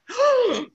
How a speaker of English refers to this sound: gasp.